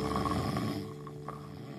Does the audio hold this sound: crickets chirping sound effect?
no